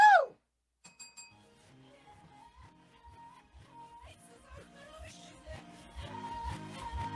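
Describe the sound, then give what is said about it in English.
A single bright game bell ding, hit by a contestant in a song-guessing quiz, rings out at the very start and fades quickly, then a pop song with a steady thumping beat starts up and gradually grows louder. “If you're able to guess the song before the 30 seconds is up, again, go ahead and hit your bells and chime in with your answer.”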